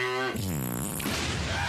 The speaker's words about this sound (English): Maybe a cow. I got it. Maybe a cow.